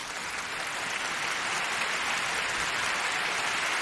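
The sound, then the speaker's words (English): Steady applause for Bill Gates from a crowd, a dense continuous patter of many hands clapping at an even loudness throughout, with no voices. “Huge clapping to Bill Gates.”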